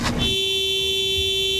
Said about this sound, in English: Arm in arm, they planted themselves across Walterdale Bridge. Within minutes, rush hour traffic at a standstill. Frustrated commuters trying to get past the wall of people.